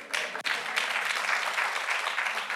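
Steady applause from a church audience, a dense wash of many hands clapping at an even, fairly loud level with no voices rising above it, after one brief dip near the start.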